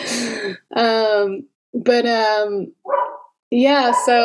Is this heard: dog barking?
yes